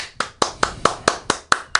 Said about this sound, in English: If you can, everybody put a round of applause for Mikey.